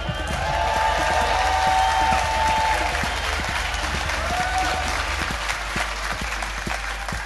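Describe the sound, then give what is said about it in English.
A large audience at the Clapham Grand claps loudly and steadily as a comedian is welcomed on stage, with cheering and a few high whistles mixed in, the applause continuing for several seconds before easing slightly toward the end. “You're not as good as last week's audience because they carried on applauding until I picked up the microphone.”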